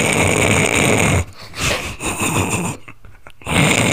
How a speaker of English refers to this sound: He snores to the sound of theme music.